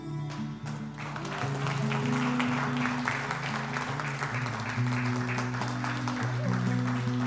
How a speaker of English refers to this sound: You're clapping right now, but you don't even know who I'm talking about yet. Okay?